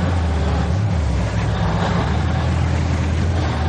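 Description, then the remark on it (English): A police RV in a film scene rumbles along at a steady pace, its deep engine drone and road noise loud, continuous throughout with no voices. “They cut to the car and it's on its way right then.”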